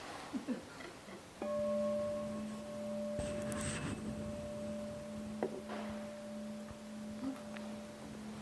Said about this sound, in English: I'll ring the bell, that'll be the way to stop me talking.